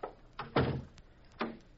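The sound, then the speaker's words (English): An office door shuts with a solid thump, preceded and followed by lighter knocks and clicks as the door is locked. The sounds are fairly quiet, with no voices. “Would you mind locking your door, Mr.”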